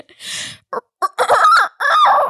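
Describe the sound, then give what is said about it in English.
A person imitates a rooster's crow, starting with a short breathy burst and choppy notes before a long, strained, wavering cock-a-doodle-doo delivered loudly. “So you said you can do rooster noises.”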